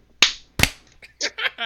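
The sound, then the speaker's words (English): Two sharp, loud hand claps about a third of a second apart, made to sync audio tracks for a recording, followed by a few brief, quieter voice-like sounds. “Oh, do we need to do another clap?”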